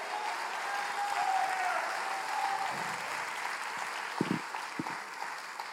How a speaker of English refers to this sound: And when Christians are asked to clap for Jesus, we go some kind of, you know, approach. Can we clap for Jesus? Can we appreciate the Lord?